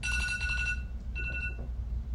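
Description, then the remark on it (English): A phone alarm chimes in two bursts of bright, steady electronic tones, the first longer than the second, over a constant low rumble, with no one speaking. “Hello, that's just an alarm.”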